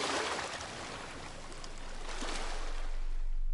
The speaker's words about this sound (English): These waves transfer huge amounts of energy from one place to another, traveling through the water and displacing it.